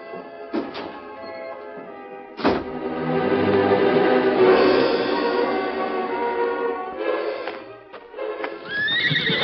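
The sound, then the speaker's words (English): A horse whinnies loudly and at length, its neighs rising and falling, with a few hoof clops on hard ground between calls at a corral, and no one speaking. “I think he took his horse down to the corral.”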